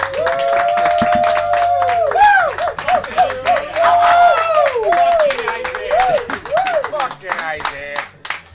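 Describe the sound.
A loud round of applause: dense, rapid clapping runs for about eight seconds while voices whoop and cheer with rising and falling pitch over it.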